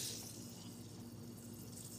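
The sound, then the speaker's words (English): A steady, continuous trickle of coffee flushing through a brewer into a cup after the plunger is added, even in level, with no talking. “once you do add this guy, it'll instantly already start to flush it through”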